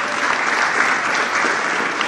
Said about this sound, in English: Yeah, we can clap for the band.